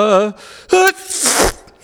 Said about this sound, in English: Three things happen at once as Erasmus sneezes.